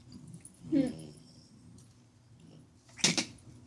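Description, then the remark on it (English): A door creaks slowly open with a short, strained groan, followed a couple of seconds later by a sharper rattling clatter, against a quiet background. “And then the door begins to slowly open.”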